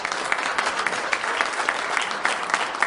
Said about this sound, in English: Let's give Ryan and the tech team a round of applause, right?